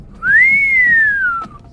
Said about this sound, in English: The smiling man let out a long, high whistle.